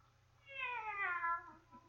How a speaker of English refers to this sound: Meow again, Kitty.